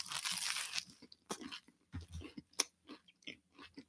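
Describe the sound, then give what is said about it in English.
A loud crunchy bite into a sandwich with a little cocktail sauce and a bun, followed by several irregular bursts of crisp chewing and crunching, with no talking. “And I'm going to slap that bun on and I'm going to take a bite.”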